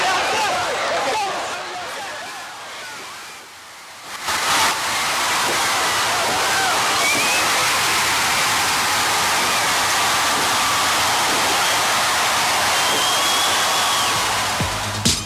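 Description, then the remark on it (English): A wrestling arena crowd in Baltimore roars loudly at the main event on May 17, 1986, a dense wall of cheering that dips briefly after a few seconds, then surges back and holds at a steady, sustained, full-throated level to the end. “The fans were, golly, they were so hot for this.”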